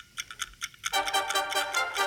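A game timer for a player's turn ticks in a quick, steady rhythm of sharp, bright clicks, and after about a second a louder, buzzy sustained tone joins in while the pulsing beat carries on.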